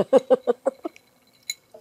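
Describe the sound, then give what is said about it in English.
Ice cubes spat out of a drink after a toast, at a location just north of Tiburon, California: a quick run of about six wet, sputtering mouth bursts, followed by a single bright little clink and a soft sound at the end. “I have to cut out me spitting the ice out.”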